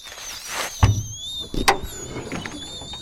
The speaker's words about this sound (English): Just pop open the hood and find out. Oh, boy.